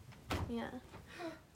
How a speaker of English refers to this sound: Oh my gosh. So annoying that my door does that.